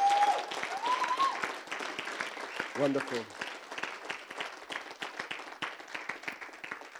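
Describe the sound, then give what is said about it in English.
A church audience claps steadily, a dense sustained round of applause lasting several seconds, with a brief spoken word and a raised voice briefly heard over the clapping. “Let's give an awesome round of applause.”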